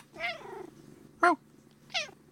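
A cat sitting on a person's lap meows three times: a long, wavering first call, then two short sharp ones, with a low rumbling purr-like hum underneath.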